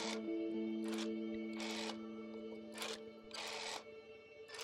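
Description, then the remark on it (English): A rotary phone dial turning and spinning back, five short mechanical whirring bursts separated by brief pauses, with a steady low hum running underneath throughout. “You hear a rotary dial.”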